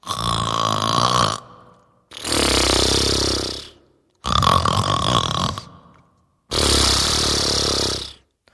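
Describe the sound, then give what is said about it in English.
A voice imitates a giant falling into his creaky old bed: four loud, drawn-out bursts with short pauses, alternating raspy, groaning creaks with harsher, breathy scraping sounds. “Next, she heard him fall into his creaky old bed, and it sounded like this.”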